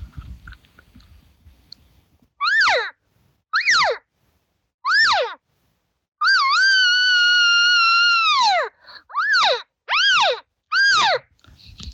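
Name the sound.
imitated cow elk call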